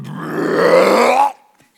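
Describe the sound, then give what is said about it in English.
A voice imitates the huge, drawn-out belch of a big fish as it gets close to land, one loud, low rumbling croak lasting over a second before cutting off abruptly into silence. “The next thing we know, that fish gets close to the land, and here comes a super belch.”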